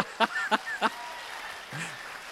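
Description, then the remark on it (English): Three sharp, isolated handclaps land in quick, even succession, then stop, a sparse smattering rather than real applause, greeting a guest as he is introduced. A faint murmur and a brief rising tone follow in the quiet background. “You hear the smattering of non-applause”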